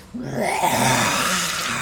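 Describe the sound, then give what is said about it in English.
A human voice imitates a polar bear's roar as the bear gallops toward a creature to jump on its back, bite and claw it: a single sustained, rough growl that starts abruptly and holds loud for nearly two seconds with a low, gravelly rumble. “Gives a huge growl of a polar bear roar as he gallops towards it, jumping onto its back, attempting to bite and claw into its body.”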